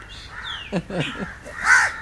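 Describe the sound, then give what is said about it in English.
Several crows caw, harsh rasping calls overlapping in quick bursts, with a louder drawn-out caw near the end and a thin chirp of another bird earlier on. “The crows are having their day. They're all talking to one another right now.”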